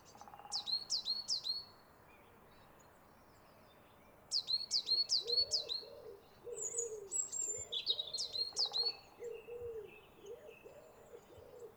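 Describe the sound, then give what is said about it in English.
A coal tit calls in a park in three quick bursts of thin, high repeated notes, while a softer, lower cooing bird rumbles steadily in the background. “Definitely a cold tit, confirmed on sight.”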